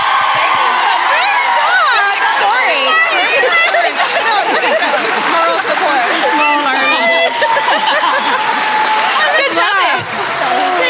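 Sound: audience applause and cheering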